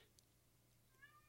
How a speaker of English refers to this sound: My cat is hollering at the door, go away, I'll pet you in a minute.